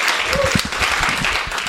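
A crowd applauds steadily, many hands clapping in a dense, even wash of sound with no pauses, sustained at a fairly loud level throughout.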